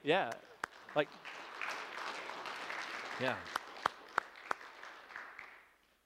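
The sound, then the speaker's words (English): An audience applauds steadily for several seconds, a dense wash of clapping with a few sharper claps and brief vocal cheers near the start, fading out at the end. “And may the applause be for you in this day, the encouragement of Christ, who says, keep it up.”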